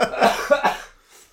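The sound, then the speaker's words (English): A sick person, after trying to laugh, gives a quick burst of three harsh coughs in rapid succession, then a faint breathy exhale as they trail off into quiet. “I wanted to laugh and then I had to cough. I still have to cough more.”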